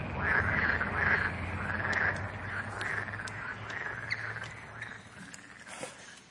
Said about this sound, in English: How many of you know what that is? What is it? Frogs. Yeah.